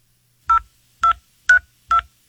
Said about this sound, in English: So to do that, Dr. Theresa Tam enlists a little celebrity help. She makes a phone call, and here it is, cut number 7.